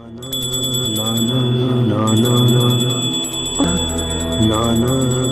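A small prayer bell rings rapidly and continuously, its bright tone sustained over a low, droning chant-like voice of a lama reciting prayers and calling out Nanak, carrying on steadily throughout, while incense is lit before an idol made of rice and butter.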